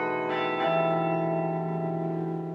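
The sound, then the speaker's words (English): Carillon bells of the town of Cobh in East Cork ring out in overlapping tones, a couple of fresh strikes layered over a long, shimmering sustain that slowly fades. No voices, just the resonant metallic chime filling the space. “It's a town which has a sound associated with it, and the sound is the bells here, is the Carillon.”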